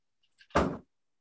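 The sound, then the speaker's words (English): A bedroom door shuts as someone walks out of the room, with a brief latch click followed by a single solid, low thunk, then silence. No one speaks. “That was my mom walking out of my room, but it works.”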